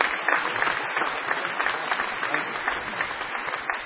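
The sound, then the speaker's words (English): A large group applauds steadily, a dense wash of overlapping claps at fairly even loudness throughout, as an audience welcomes the new president of Louisiana College. “I hope after we've been here a few years, you still applaud when we come to share with you.”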